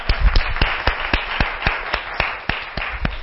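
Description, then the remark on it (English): A group claps steadily together as a hand clap of praise to God after a Sunday lesson, a dense spread of hand claps with a few sharper ones standing out in a roughly regular rhythm, moderately loud, with no talking. “All right, so let's give God a warm hand clap of praise.”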